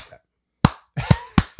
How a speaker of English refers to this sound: I'm just slow clapping, but.